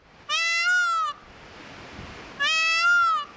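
A peacock calls twice, each a loud, nasal, wailing cry lasting nearly a second, separated by a short pause. The calls are clear, with no talking.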